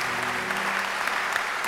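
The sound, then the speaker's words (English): A crowd applauds steadily, clapping for God, a dense, even wash of many hands clapping at once that holds at a constant moderate level for the whole short stretch, with no voices. “Please clap a little, just 10 seconds.”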